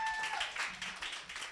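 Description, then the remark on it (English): An audience claps in a dense, steady patter of many hands that holds fairly loud throughout, with a thin high tone sounding briefly at the start. “Clap it up for all of them.”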